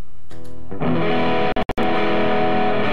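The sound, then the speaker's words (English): Heavily distorted electric guitar notes ring out loud and dense, sustained with a gritty buzzing tone, briefly cutting out twice near the middle before roaring back in. No one speaks. “what I want you to do now is I want you to play those same notes, but I want you to play with distortion.”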